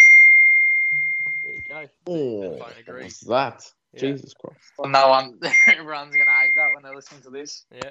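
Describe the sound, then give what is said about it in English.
A steady electronic beep, like a phone or microwave, sounds for almost two seconds and then briefly again later, with people talking over the second tone. “Had a phone or a microwave?”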